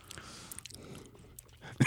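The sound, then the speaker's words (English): Close-up chewing right at the microphone: wet smacking and crunchy bites in an irregular rhythm, finishing with a louder, sharper crunch near the end. “Just chew right into that microphone.”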